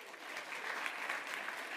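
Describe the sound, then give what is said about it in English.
A crowd at a Salt Comedy show applauds the band steadily, dense clapping at an even level from start to finish with no voices breaking through. “All right, you guys, let's give it up for the band, huh?”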